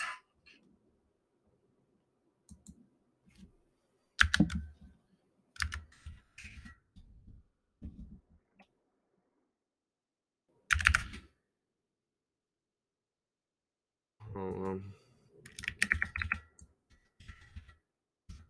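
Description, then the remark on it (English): Computer keyboard typing in irregular bursts, with clustered clicks and taps separated by short pauses, moderately loud, with no voices present. “You can hear my keyboard, I'm sorry, but...”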